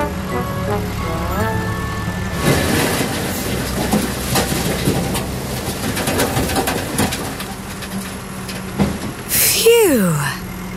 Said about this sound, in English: And goodbye, dump truck. We'll be getting off soon, but not until you've dumped your load.